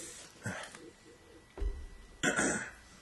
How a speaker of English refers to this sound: Just had a little cough attack there.